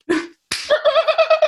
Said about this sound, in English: Trevor slaps Bobby. Bobby slaps Trevor.